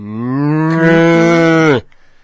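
A single long, loud cow moo, holding a steady droning tone for nearly two seconds before cutting off abruptly, followed by brief quiet.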